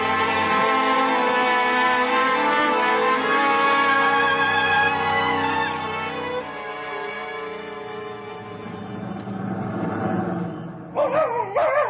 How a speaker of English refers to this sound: It's all right, Bate. You can stop barking. It's no way to welcome me home.